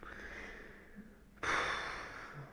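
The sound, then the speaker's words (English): After a quiet stretch, a person takes one sudden, sharp sniff from a 50cl bottle of 89.9% Habsburg Absinthe Extra Strong XC Original, a loud breathy rush that trails off slowly, with no talking. “just sniffed it and nearly died.”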